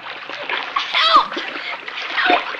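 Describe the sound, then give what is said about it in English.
Someone dives into a raging, flood-swollen river to save a boy thrown into it, sending up steady, loud churning splashes, with water sloshing throughout and brief voice-like cries rising over the turbulence. “Bobby is thrown into the raging river, and Cisco dives in to save him.”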